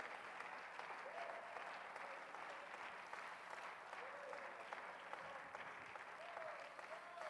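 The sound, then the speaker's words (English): An audience claps hands to magnify the name of the Lord, in sustained, dense applause for several seconds, a steady wash of overlapping claps with faint voices and brief tonal calls rising now and then beneath it. “Would you clap your hands and magnify the name of the Lord?”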